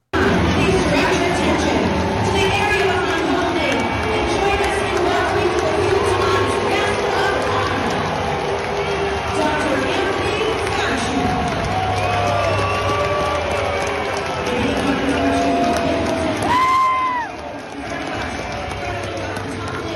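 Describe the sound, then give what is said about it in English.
A loud, steady roar from the crowd at a Seattle Mariners baseball game in Seattle as Dr. Fauci throws out a pitch, with cheering, shouting voices and scattered clapping blending into a dense wash that dips slightly near the end. “So again, you may say, oh, Benny, we see some people clapping.”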